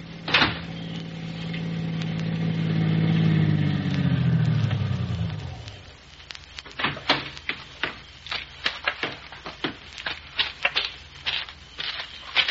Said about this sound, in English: A car down there at the foot of the hill just turned in your driveway.